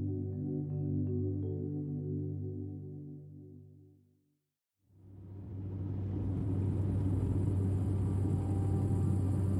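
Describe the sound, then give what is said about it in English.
A steady tonal hum fades into a brief silence, then a continuous low rumble of a car cruising down an empty highway on a warm, bright autumn morning rises and holds, loud, with a constant hiss of tire noise. “The sun is warm and bright on this autumn morning as you drive your car down the empty highway.”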